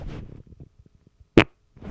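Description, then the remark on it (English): A single short, loud fart bursts out after a stretch of quiet, low murmuring sounds, lasting only a fraction of a second with a sharp, raspy snap. “I think I might have to fart.”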